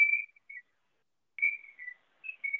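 Someone whistles softly in short, wavering phrases separated by pauses, a thin high tune drifting in the background with no talking.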